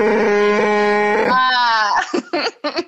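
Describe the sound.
A person vocally imitates a Wookiee call: a loud, strained, sustained howl that bends in pitch, then breaks into three short, rough, gurgling bursts. No words are spoken.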